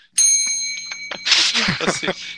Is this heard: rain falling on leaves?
no